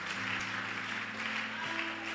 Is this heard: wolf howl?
no